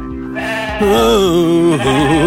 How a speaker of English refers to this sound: Once or twice was enough, but now it's driving me insane. Time starts to pass, but still that sheep keeps going.